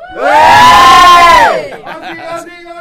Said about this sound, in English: And, yeah, here's hoping this is not your last Belfast tattoo. Do you want to give us a cheer before we go?